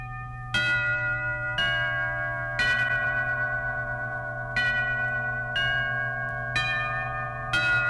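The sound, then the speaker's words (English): A shop doorbell at Dr. Proboscis's Nose Store chimes with bright, ringing bell tones, struck about seven times at a steady pace, each note sustaining and overlapping the next over a low, constant hum. No voices. “A weird doorbell, isn't it?”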